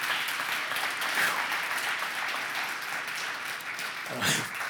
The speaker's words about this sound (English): I don't think I've ever been clapped for before.